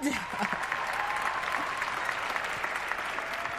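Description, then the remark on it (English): A crowd claps steadily for the single mothers in attendance, a dense, even wash of many hands that holds at the same loudness for the whole few seconds, with faint voices mixed in underneath. “And let's give a round of applause to all the single mothers in attendance today.”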